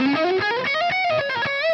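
A distorted electric guitar plays a quick legato run: about six notes are picked and the rest are hammered on, with fingers pressed onto the fretboard. The notes flow smoothly upward with few distinct picks, loud and sustained with no talking.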